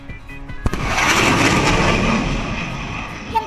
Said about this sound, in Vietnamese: vượt qua hay vượt qua đến đôi lần tốc độ âm thanh, có trị số bằng 1.235 km/h, đồng thời tạo ra sự vỡ của bức tường âm thanh, một hiện tượng có tên khoa học là tiếng nổ âm thanh hay sonic boom.